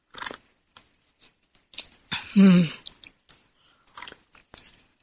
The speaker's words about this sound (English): And I need to take a sip of my tea here.